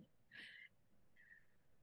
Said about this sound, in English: And I process through yawning. I'm not bored or tired. I'm just helping you move the energies.